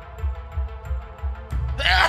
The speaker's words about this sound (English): Man, I've mentioned this before. Ever since I had that umbilical hernia repaired, I have the weirdest thing. If I haven't eaten and I have a sneeze coming, it's a whole body preemptive experience that I do not enjoy.